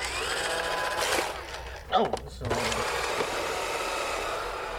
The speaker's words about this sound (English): Yeah, but they're robotic vacuum cleaners. You press the clean button and you walk away and they clean the house.